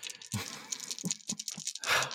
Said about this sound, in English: All right, let me get these dice together. Sorry, there's one more.